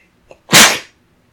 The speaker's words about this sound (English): Gesundheit. Sneezing on mic.